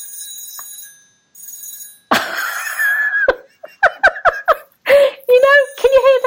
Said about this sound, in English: This is the home phone in my office. I am not going to answer it because guess who it is? In fact, I should have it on a loudspeaker. Telemarketer.